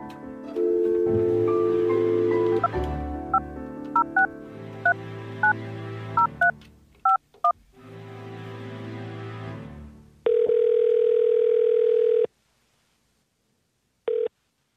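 A phone number is punched in as a quick series of touch-tone beeps over a steady droning tone, then the line rings with one long electronic ring and the clipped start of another, in a call to a man fired as a mall Santa.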